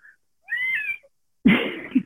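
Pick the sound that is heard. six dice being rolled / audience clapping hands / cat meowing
cat meowing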